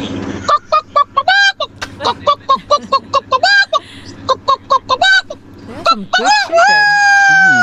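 A rapid, busy string of short, sharp clucks from chickens, then a long drawn-out rooster crow rising and sliding at the end.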